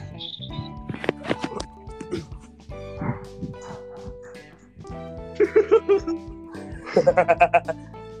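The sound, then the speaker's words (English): A dog barks in two quick bursts of sharp, rapid yips and barks, fairly loud, with people talking in the background. “Yo, special guest, a dog?”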